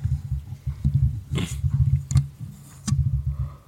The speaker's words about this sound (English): And she just yawns.